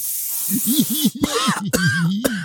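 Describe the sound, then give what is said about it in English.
An Axe aerosol body spray can hisses in a long steady burst, then in a few shorter spurts, loud, with a low droning voice-like tone running underneath, used to imitate the sound of air being let out of tires. “Want to hear the air getting let out of someone's tires? You just take this Axe body spray.”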